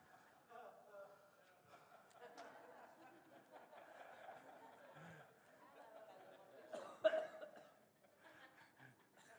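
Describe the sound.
A single loud, forceful cough bursts out over a low murmur of people talking and chuckling in a room.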